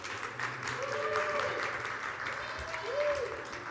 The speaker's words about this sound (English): so give it up for the kids. Just keep applauding. There you go. Keep going. I just need a little more. Keep applauding. Keep applauding for the kids. Keep applauding.